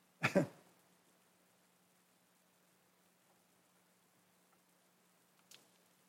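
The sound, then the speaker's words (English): A sharp throat clearing bursts out at the start, then near silence with faint hum, and a brief softer click-like sound near the end. No speech. “It has to be very annoying to hear me clearing my throat over and over again, so I'm going to try not to do that.”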